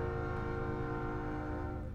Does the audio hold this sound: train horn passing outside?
yes